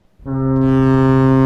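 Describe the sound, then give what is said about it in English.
A long bell ring sound effect, rung for Michelle Wolf's hour set: one loud, low, buzzy tone that swells in quickly and holds steady without fading, rich in overtones, with no voices over it. “I'm ringing that bell for Michelle.”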